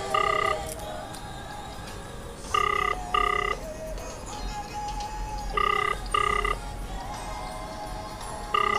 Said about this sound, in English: He's taking forever to pick up his phone, and I did warn him that I'm gonna call him. But it's taking forever.